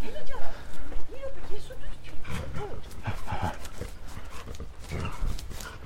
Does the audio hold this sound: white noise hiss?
no